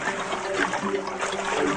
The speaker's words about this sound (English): She's in that pond. Every hand movement is being recognised. Being able to touch fish, being able to swish the water with her hand.